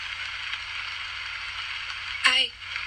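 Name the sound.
rain falling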